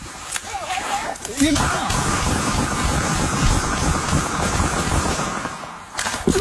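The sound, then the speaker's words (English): A dense, rapid barrage of gunshots fired into a car by two shooters continues for several seconds, the loud cracks overlapping into a rattling roar, with voices audible faintly around the shooting. “He and his partner are unloading into the car.”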